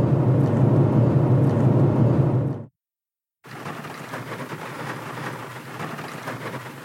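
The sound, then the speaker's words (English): Heavy rain pours in a dense, steady roar with a deep rumbling undertone while an Estes Goblin model rocket is being prepped for flight. The rain cuts out to silence for a moment, then resumes as a loud, hissing downpour. No one speaks. “Well, I don't know if you can hear this, but it's raining like Jurassic Park.”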